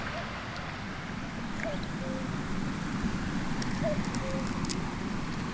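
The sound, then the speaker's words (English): A cuckoo calls twice, each a soft two-note 'cu-coo', nearly buried under the steady rushing roar of a waterfall. “A cuckoo. I'm overwhelmed.”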